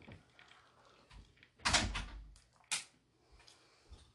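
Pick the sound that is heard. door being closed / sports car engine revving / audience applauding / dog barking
door being closed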